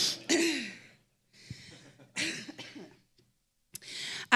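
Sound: chest cough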